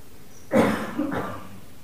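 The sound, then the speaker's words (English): Someone coughs twice: a sharp, harsh first cough followed by a softer second one about half a second later, against a quiet background. “Absolutely, the birds and the coughing and the voice.”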